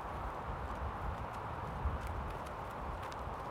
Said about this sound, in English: The next time you see the rider, they're coming down the path, sitting high on their horse.